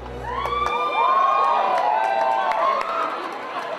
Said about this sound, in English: I do believe that is the proper amount of applause.